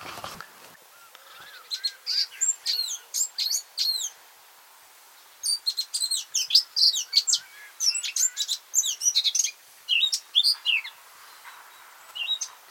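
A blackcap sings a rich, warbling song in two bursts of quick, varied phrases, clear, with a short pause between them and a quiet background.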